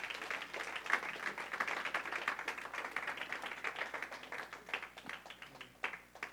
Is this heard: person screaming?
no